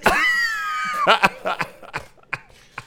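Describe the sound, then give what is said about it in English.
A drawn-out strained vocal sound gives way to a run of short, sharp coughs, fairly loud, coming in uneven bursts before fading into quieter hacks. “stop coughing.”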